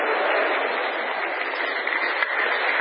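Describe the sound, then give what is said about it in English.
An audience at a sermon applauds a picture of the preacher's 8-year-old grandson, a dense, steady wash of many hands clapping at even loudness for about three seconds, with no one speaking over it. “Wait till I tell him he got applause.”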